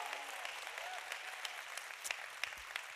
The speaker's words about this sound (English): Of all the groups of people we clap for, none better than Jesus himself. Can we honor him today? Come on, church. Oh, come on, you can do better. How about Jesus here?